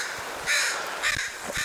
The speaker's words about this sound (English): Even the crow agrees. He's pissed.